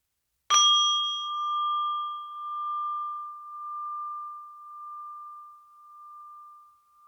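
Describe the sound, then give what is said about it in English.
A single meditation bell is struck once to begin a guided meditation, sounding a clear, bright tone that rings on with a slow, gently pulsing decay for several seconds in an otherwise quiet space. “I will ring the bell to get started.”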